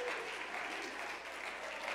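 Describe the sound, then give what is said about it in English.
A church audience clapping their hands during a short praise break, in a dense, steady wash of applause that holds at an even, fairly loud level throughout, with no individual claps standing out. “if you believe that we're living in a day of promise for this church, you ought to take about a little 5-second praise break right now, and you ought to clap your hands and thank Jesus that you're living in this day.”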